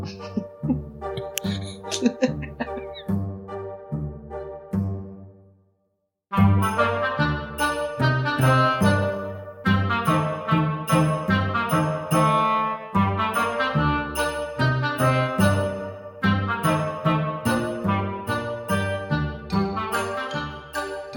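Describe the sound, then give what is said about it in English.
A short instrumental jingle with bright, bouncy melodic notes over a bass line. It stops briefly after about six seconds, then returns fuller and louder with a steady rhythmic beat until the end. “Let's have a jingle, then we'll do a quiz.”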